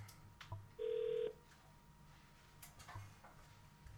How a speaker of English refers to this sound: I'm trying to do these random phone calls on my podcast to see if niggas really go pick up.